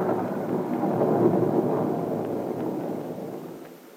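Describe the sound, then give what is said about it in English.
Rain pours steadily beneath a long, low roll of thunder that rumbles loud, then gradually eases off toward the end. No voices are heard. “I think this is the most beautiful rainy day I've ever known.”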